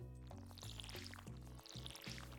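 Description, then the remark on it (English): A video game watering can sprinkles plants, giving soft trickling, splashy sounds with bright sparkly chimes over steady background game music, quiet and continuous for a couple of seconds. “I'm gonna water the plants.”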